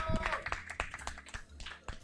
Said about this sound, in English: Round of applause